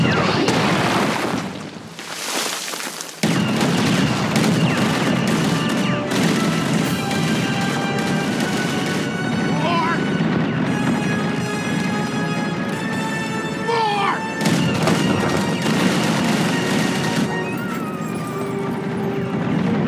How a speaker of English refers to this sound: Our next one, all those AT-ATs shooting everything at Luke Skywalker.